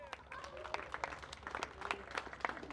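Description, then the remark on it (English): Scattered, polite clapping from an audience welcoming a speaker to the front, light and uneven like golf-tournament applause rather than a full ovation, with a faint murmur of voices underneath. “Like you guys are doing like clapping like we're part of a, like a, it's a golf tournament.”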